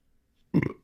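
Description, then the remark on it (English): A single short, loud burp erupts after a moment of near silence, deep and throaty, then cuts off quickly, after chugging a sugary juice drink at about 11:30 at night. No one speaks. “Excuse me. Burp chug.”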